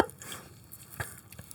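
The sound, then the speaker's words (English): A whole pack of pop rocks candy crackles in a mouth: faint, irregular little snaps and fizzy pops, with a couple of sharper clicks standing out against a quiet hiss, and no voice. “Pop rocks kind of get a little bit more Lovecraftian with age.”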